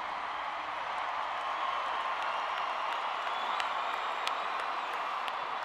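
Steady, dense applause from a large audience, a continuous wash of clapping that holds at an even level for the whole stretch, with a few sharper claps and faint cheers rising through it.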